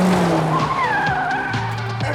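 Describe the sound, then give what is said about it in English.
During an ambulance chase in a film, tires squeal and skid in long, wavering high-pitched whines over a loud, steady rumble of engines, with no talking. “Oh, and the ambulance chase that comes right after that.”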